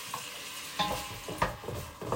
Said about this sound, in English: So in the current moment, we are frying up the onions.